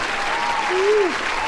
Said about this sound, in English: You can hit your applause button. How about that? Wait for it. The studio audience loves it. The studio audience loves it. Here it comes.